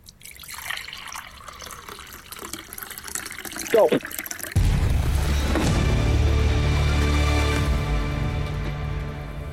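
Water is poured into a vessel during a contest to fill it as full as possible without spilling over the top: a few scattered splashes and trickles at first, then a steady, loud gushing stream whose tone rises gradually as the vessel fills.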